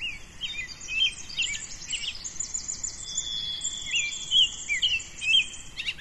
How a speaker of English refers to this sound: Birds are just waking up. What time is it now? 6:16 AM. Yep. Just starting to come alive in this last 5-6 minutes. Yep. I can't wait to get in there. We head off down the trail, and the birdsong just comes alive.